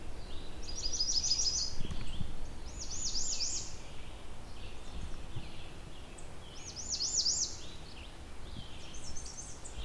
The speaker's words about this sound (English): Red starts have all kinds of variations on their warbling.